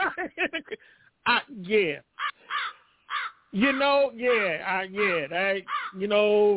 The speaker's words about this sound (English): Give me the crows. Give me the crows.